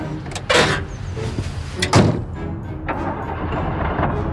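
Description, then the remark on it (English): The door of a 1980s American car opens with a metallic clunk, and a couple of seconds later slams shut with a solid thud, over a low background rumble. No one speaks. “The walk to the store really wasn't that far, but Grumpy Shit's a lazy bastard, so he hopped in his car.”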